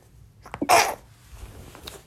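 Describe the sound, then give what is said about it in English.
A single sharp sneeze, fairly loud, with a short inhaling buildup before the explosive burst, then quiet background noise. “Thank you. Anyone who said bless you out there?”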